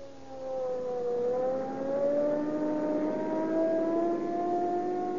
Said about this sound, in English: Now, there we are. 80 miles an hour. Boy, I'll show you what police car performance means. We'll use every bit of power we can get out of that Rio Grande cracked gasoline.